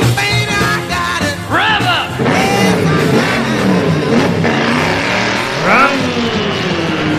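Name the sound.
car engines revving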